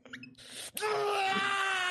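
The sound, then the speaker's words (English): After a brief breathy lead-in, a person lets out a loud, sustained, strained scream of rage that holds steady for over a second, raw and wailing with no words. “Just fucking screaming in my rage, if you'll allow it, with my diamond thighs.”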